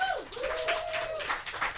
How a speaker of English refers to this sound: We have Chris Neary from Freakonomics Radio. Please clap for Chris.